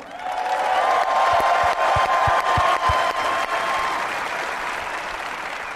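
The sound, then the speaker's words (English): An audience in Phoenix breaks into sustained applause for James Jones, a dense wash of clapping with a few sharper individual claps standing out, holding steady and loud before easing slightly toward the end. “Give a round of applause to Mr. James Jones.”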